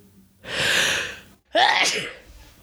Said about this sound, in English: oh, I got to sneeze. Oh, I got to sneeze.